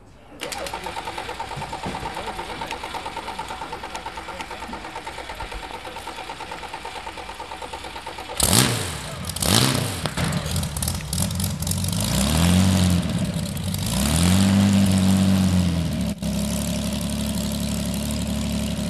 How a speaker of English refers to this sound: Well, there you go. That's old engines for you. Having said it was easy to start, it decided to do its own thing.